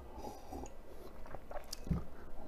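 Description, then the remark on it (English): Quiet, wet mouth sounds of someone sipping whiskey: a few soft slurps and swallows with small smacking noises, no talking. “Let me take a little sip of my whiskey here.”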